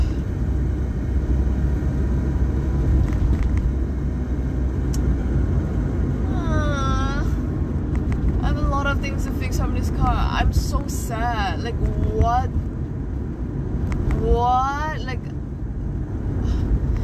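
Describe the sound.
A steady, loud low rumble of a car driving, heard from inside the cabin, continues throughout, with a voice talking over it partway through.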